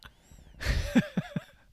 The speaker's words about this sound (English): My nose is whistling. Not anymore. It's like the old man breathing on a Family Guy.